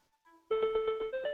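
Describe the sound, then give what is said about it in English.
A small item finder tag rings while its button is held down: faint tones at first, then a louder pulsing electronic melody of rapid repeated beeps rising in pitch, stopping when the button is released. “And then the minute you take your finger off this little button, it stops ringing.”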